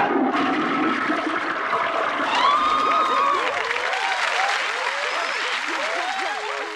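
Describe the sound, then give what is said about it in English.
A TV sitcom studio audience bursts into loud, sustained cheering and applause at a toilet flush, with scattered whoops and shouts rising over dense clapping that continues throughout. “Little stupid things like you'd hear the toilet flush and the entire audience would cheer.”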